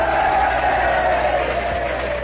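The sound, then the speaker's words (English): A crowd gives a cheer for Robert Moses, cheering and shouting together in a steady, dense roar of many voices, holding at a constant loud level for a couple of seconds with no individual words standing out. “Let's give Robert Moses a cheer.”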